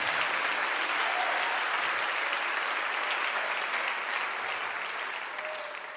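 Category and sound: crowd, audience clapping hands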